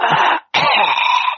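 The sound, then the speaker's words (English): Two loud coughs in quick succession, rough and wet-sounding, the second one longer and drawn out, with no talking around them. “you know, he's just phlebby coughing.”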